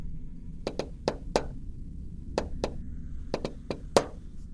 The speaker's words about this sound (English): Then he goes to the door and he gives it a series of special knocks. It goes like this.